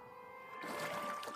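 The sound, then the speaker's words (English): Quiet river water trickling and burbling steadily, swelling slightly after a moment, with a faint constant hum underneath and no voices. “I've been to this part of the river before.”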